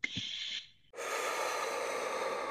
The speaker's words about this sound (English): This is just me focusing on my breathing and doing it in the way that felt the best for me. And it was this continual breathing. And I was focusing, just breathing into my womb and back out and breathing in and out.